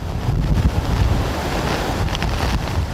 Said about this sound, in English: Heavy wind gusts and torrential rain hammered Halifax early Saturday afternoon as the storm intensified.